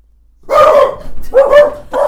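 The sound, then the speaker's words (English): The speaker's pet dogs bark in three loud bursts, the first one long and the next two short, with brief gaps between them and no talking. “Listen, dogs. Stop it.”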